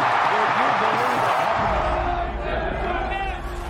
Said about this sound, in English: Oakland, a big crowd, over 54,000 strong.